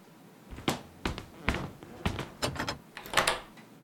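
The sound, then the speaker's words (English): A door is pushed shut and locked, a run of sharp clunks and rattling clicks from the latch and bolt spread over a few seconds, with no one talking. “Well, just make sure the door's locked. Yeah, I just did.”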